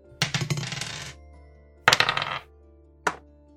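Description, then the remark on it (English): Dice clatter across a hard surface three times during a game: a long rattling roll, a shorter second one, then a brief final tumble, with results including a 14, a 5 and a natural 20. The sound is fairly loud, with no voices. “I rolled a natural 20.”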